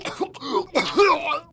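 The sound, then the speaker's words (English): Two rough, throaty coughing bursts as someone coughs up blood, the second longer and raspier than the first, with no talking. “You're coughing up blood, I see.”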